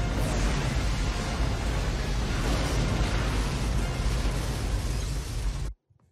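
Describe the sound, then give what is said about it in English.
A huge explosion in a film erupts into a sustained, deep roaring rumble with crackling debris, holding at full loudness for several seconds before cutting off abruptly into silence. “That explosion's pretty fucking big.”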